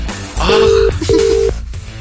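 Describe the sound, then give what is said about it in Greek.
An outgoing phone call rings on the line: two steady ringback tones, each about half a second, separated by a short gap, heard clearly over faint background noise. “Σιγά μη σηκώσει τηλέφωνο.”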